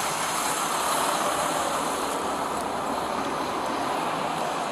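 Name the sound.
car engine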